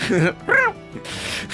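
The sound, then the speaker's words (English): A person voices two quick, rising-and-falling meows in imitation of a cat, fairly loud, followed by a soft breathy hiss of noise. “The cat sound the cat makes.”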